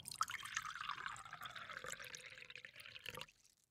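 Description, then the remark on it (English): Water pours steadily into a glass for about three seconds, the gurgling tone shifting as it fills, then stops abruptly into quiet. No one speaks. “It's a water break.”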